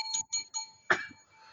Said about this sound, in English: Ring that bell